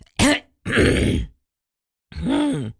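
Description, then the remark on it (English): Throat clearing in three gruff bursts: a short voiced grunt, a longer rough, raspy rumble, then after a brief pause a final voiced hum-like clearing. No speech. “I have to clear my throat, so just excuse me a second.”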